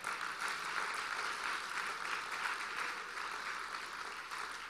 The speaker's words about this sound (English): Today we honor moms for all they do. Let's give moms a hand clap.